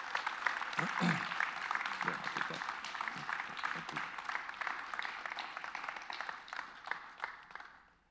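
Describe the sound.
A round of applause from a crowd: dense, steady clapping that holds for several seconds, with a few voices mixed in, before thinning out and fading at the end.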